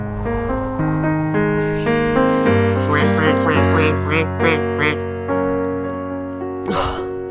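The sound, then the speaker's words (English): A duck quacks in a quick run of nasal, buzzy calls over steady tones. The quacks are fairly loud, with a final sharp quack near the end. No one speaks. “It's one sick duck.”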